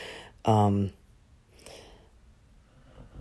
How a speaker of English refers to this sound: Oh, that's my dog snoring.